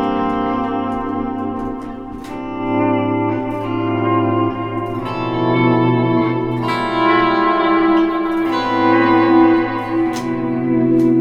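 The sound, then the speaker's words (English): A sustained electric guitar, played through overdrive, reverb, two delays and a volume pedal with no modulation effects, plays swelling, ringing notes drenched in reverb and echoing delay, the tones blooming and overlapping smoothly with no talking over them. “Yeah, that was just reverb and a bit of delay.”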